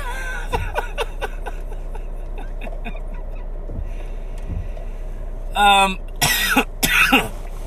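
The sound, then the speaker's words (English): A few harsh, loud, raspy coughs burst out near the end, after a stretch of quiet background noise with faint clicks and murmuring. “Oh, God, are we disgusted because I'm coughing?”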